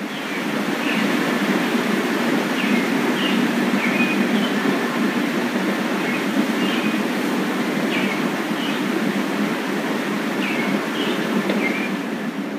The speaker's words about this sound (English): I was standing next to the window when I recorded it. What I hear in that bird song is, I want to say it's like a bird that I recognize from dawn.